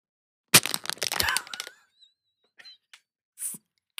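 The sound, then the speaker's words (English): Two plastic water bottles are knocked together in a halftime toast with a sharp hollow clack, followed by a second of dense crinkling and crackling plastic, then a few faint scattered taps and rustles. “I've got two plastic water bottles, and I'll toast them right now.”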